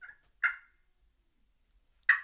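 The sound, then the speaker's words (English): A few short, sharp turkey clucks imitated with a call, spaced irregularly with silence between them, fairly loud, with no talking. “I know it doesn't sound like it, but I'm just doing some clucks.”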